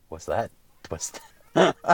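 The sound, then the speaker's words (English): A human voice imitates a goose, letting out a few short, nasal, honking calls in quick succession, fairly loud, with brief pauses between them. “Goose.”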